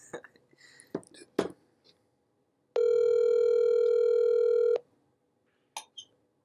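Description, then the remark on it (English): A single steady ringback tone of an outgoing phone call, sounding for about two seconds, loud, preceded by a few sharp handling clicks and taps. “Maybe they should be able to hear it ringing.”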